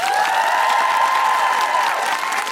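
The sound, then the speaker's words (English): Loud, sustained applause from an audience at the Science Museum for Dr. Anne-Marie Imafidon, dense and steady throughout, with cheering voices rising over the clapping and a few higher-pitched whoops carrying across. “A big round of applause to the wonderful Dr. Anne-Marie Imafidon.”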